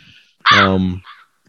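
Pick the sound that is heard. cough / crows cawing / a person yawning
crows cawing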